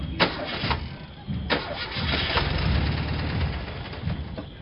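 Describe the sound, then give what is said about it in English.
The engine of a little yellow Bug car with a dead battery cranks repeatedly with a rough, sputtering whir and sharp clicks. It struggles but never catches, fairly loud for several seconds. “Not only are you surrounded by vendors, but your car ain't got no juice.”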